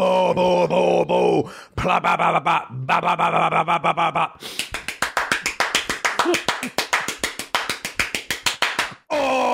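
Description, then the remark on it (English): A squeaky handheld fart maker toy lets out a few loud, wavering, wheezy honks, then a long, rapid sputtering buzz of quick pulses that ends abruptly. “I got a little fart maker in my hand right here, guys.”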